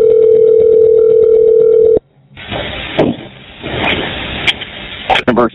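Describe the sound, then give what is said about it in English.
A steady electronic telephone tone sounds loudly for about two seconds as a call is transferred to a sergeant's phone, then cuts off into muffled, band-limited phone-line noise with faint voices and clicks. “But the sergeant is actually ready for me to transfer you over, so I'm going to get you over to his phone, and he can probably give you some better details than what I've got, okay?”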